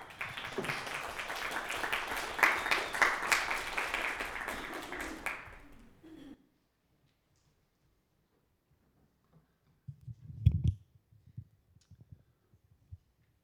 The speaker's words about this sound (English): So if you would welcome him with a round of applause.